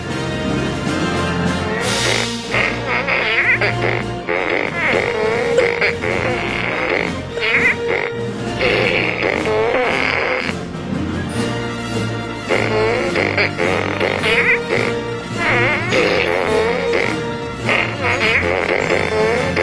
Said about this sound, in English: What do you play, sir? I play the fart gun in the orchestra.